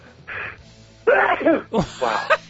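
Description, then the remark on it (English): A person with allergies sneezes on a radio broadcast: a short breathy intake, then loud, throaty voiced bursts with sliding pitch, ending in a couple of quick follow-up blasts. “That was one of the better radio sneezes I've heard.”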